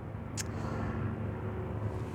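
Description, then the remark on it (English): Two helicopters flying above a house make a steady, low droning rumble with a faint rhythmic throb, holding at a constant loudness throughout. A brief sharp tick cuts in near the start, and no one speaks. “I think there's actually two helicopters there.”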